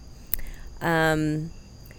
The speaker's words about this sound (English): We are actually recording from our backyard. I don't know if you can hear the crickets. It's kind of nice. It's wonderful. It reminds me of the South.